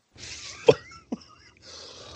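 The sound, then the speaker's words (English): Two short, sharp coughs from one person with bronchitis, a strong burst followed by a smaller one about half a second later, with soft breathy noise around them. “So, you know, for everybody out there listening, you could tell I still got this goddamn cough.”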